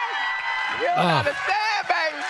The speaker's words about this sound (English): So you yell out lies and people just applaud that now?